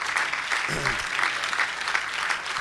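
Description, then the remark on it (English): A worship audience claps steadily in dense, sustained applause to God, with a brief shout or cheer rising through the clapping partway in. “Come on, let's clap our hands to him one more time.”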